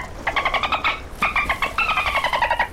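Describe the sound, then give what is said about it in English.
Dolphins chatter in quick bursts of high, squeaky pulsed calls and short whistles, two rapid sequences separated by a brief pause, clear with no talking. “What do I spy? Dolphins!”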